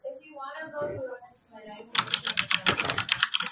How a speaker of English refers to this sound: I love the typing chatter noise that forms in Audacity when you type. The waves are just amazing.